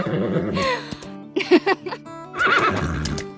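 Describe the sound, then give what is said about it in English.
A horse whinnies loudly, a series of shaky, quavering neighs with brief snorting breaths between them, heard on its own with no talking. “We got a whole new horse library because in that show, there's three characters who are horses, so there are no actors voicing them.”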